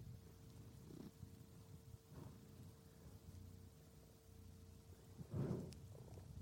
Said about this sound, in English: That's him rubbing the microphone with his cheek and his yucky face. And he's settling there we go, down. Purring time. Here comes the purr.